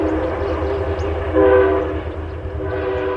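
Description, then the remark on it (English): A Metro North Harlem Line train rumbles past where the Appalachian Trail crosses the tracks near Pawling, New York. Its steady low roar is joined by a sustained horn blast that swells loudest in the middle before easing off, with faint rail clatter underneath. “Near Pawling, New York, the Appalachian Trail crosses the train tracks of the Metro North Harlem Line.”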